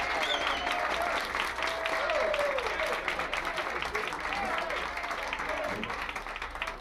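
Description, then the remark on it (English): An audience in Buffalo applauds a young guitarist from Columbus, Ohio, steadily and loudly for several seconds, dense clapping filling the whole stretch, with faint cheers or whistles rising above it before it starts to taper at the end. “Let's give him a tremendous round of applause.”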